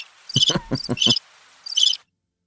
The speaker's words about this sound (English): Either you got some crickets going on, or some hamster wheels going on. I couldn't even tell. That was some crickets. That was the crickets.